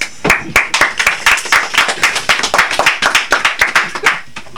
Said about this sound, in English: Clap it up